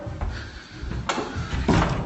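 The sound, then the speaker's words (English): A door slams shut with a heavy thud, followed by a second sharp bang a moment later over low rumbling background noise. “Brought me fucking door! Look at the fucking state of this!”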